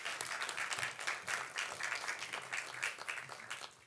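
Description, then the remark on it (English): Sustained applause from an audience, a dense, steady patter of many hands clapping at once, fairly loud and continuous throughout with no voices rising above it, welcoming a speaker as he comes up to the front. “You might have to keep the clap going as he gets down here.”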